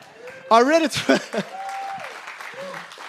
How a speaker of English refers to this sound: And keep clapping if you want.